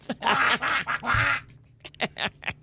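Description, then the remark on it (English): A person does a raspy, quacking Donald Duck-like cartoon voice, fairly loud: a rapid run of garbled squawky syllables, then a few shorter, quieter bursts after a brief pause. “You sound like Donald Duck.”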